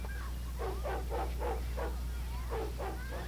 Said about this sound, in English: Barking faintly.